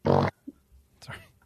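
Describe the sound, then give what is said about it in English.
A loud, buzzy fart sound effect from a burp and fart piano app blasts for a fraction of a second, followed by a couple of softer, brief noises, one slightly voice-like. “Sorry, I wanted to play with my burp and fart piano app.”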